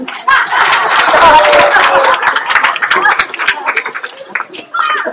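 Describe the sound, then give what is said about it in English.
A roomful of people clapping in answer to a question put to the audience, a dense rapid patter of many hands that swells quickly, holds steady, then thins out before a brief final burst, with scattered voices and a few laughs mixed in. “Clap.”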